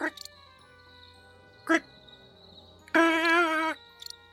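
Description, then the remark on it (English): A person vocally imitates a strange, modem-like cicada noise coming from a tree line at night: a couple of short, rough bursts, then a longer warbling, wavering electronic-sounding tone, fairly loud, with no real words. “like it's a weird, almost like a modem sound. Can't believe there's cicadas in this world, too.”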